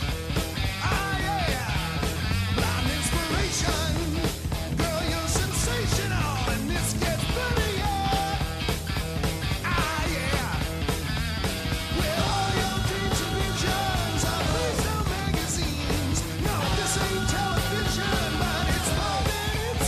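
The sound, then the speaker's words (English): A loud rock band plays a shuffle groove, with dense distorted guitars and steady, driving drum hits running throughout the whole stretch at a consistently full volume. “Ironically, I'm putting down this song as a shuffle, but ironically, it is, you know, one of the only fully properly written songs on ….”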